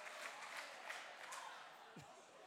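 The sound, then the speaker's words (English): A small group applauds themselves after hula dancing, a steady wash of overlapping claps lasting a couple of seconds, fairly soft, with a faint murmur of voices mixed in. “Give yourself an applause.”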